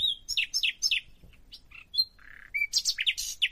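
Bright birdsong of quick, repeated descending chirps, a brief quieter stretch of scattered notes, then a dense burst of rapid high trills. Clear over faint low background rumble, with no talking.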